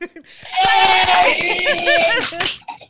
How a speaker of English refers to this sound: So, yay! Hello! You guys can clap, too!